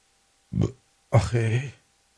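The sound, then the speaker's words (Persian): A loud belch: a short guttural burst followed by a longer, drawn-out rumbling burp, with quiet before and after. “گفت حزب بادمی آروغ بزنم.”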